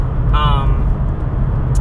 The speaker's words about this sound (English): Sorry if all of a sudden it sounds like a goddamn airplane is right above me. I'm going through this tunnel and it always makes this fucking loud-ass noise, so hopefully you can hear me.